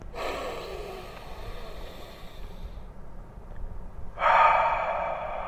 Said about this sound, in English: Three deep breaths, and then we'll deeper each time, and then we'll try to hold the last one